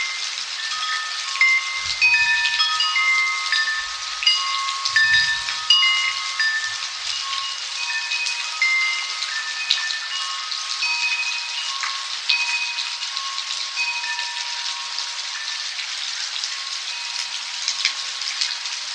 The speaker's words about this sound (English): We leave you this week in California during a midnight rainstorm. … recorded this California rainstorm for ….